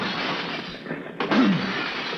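A sudden, sharp crash of breaking glass as the side glass windows of a rooftop penthouse are smashed open with an old can opener tool, bursting out of a steady roar of noise, followed by a brief lower rattle before the constant rushing sound carries on.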